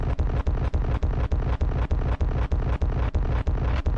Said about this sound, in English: Am I not supposed to press this explosion button 18 times